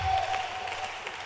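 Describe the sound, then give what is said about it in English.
An audience applauds steadily, many hands clapping in a dense, even wash of sound with a faint high tone running briefly underneath. “Clap your hands for the heroes.”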